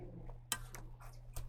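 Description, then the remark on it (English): A few faint, irregular mechanical clicks of a clock ticking while its time is being changed, heard over a steady low electrical hum. “for changing the clock.”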